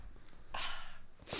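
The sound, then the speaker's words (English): Someone blows their nose, a forceful half-second rush of air, then a short second burst moments later. No one speaks. “I'm going to blow my nose.”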